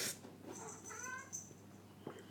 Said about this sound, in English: Oh, it's a cat.